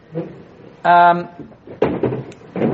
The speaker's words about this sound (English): Take a chair off the stack? Thank you. Take a chair off the stack for him.